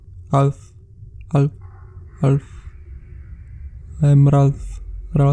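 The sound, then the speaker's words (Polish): A voice calls out a short word in a tunnel, then repeats it several times at spaced intervals, mimicking a taunting echo bouncing back, with a doubled call near the end over faint background murmur. “Słyszysz przedrzeźniające cię echo.”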